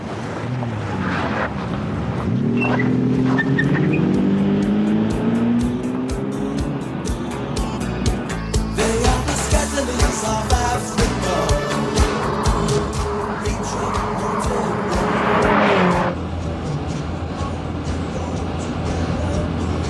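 A car drives along the road on the way to Palm Springs, its engine humming and rising in pitch over a steady rush of road and wind noise, loud throughout.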